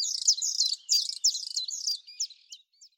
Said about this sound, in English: whistles and buzzes. It's a beautiful male blue throat, his vivid azure throat and upper breast rimmed with rust. The song presses on and on. Spring has come to the Arctic. The birds' voices make it known.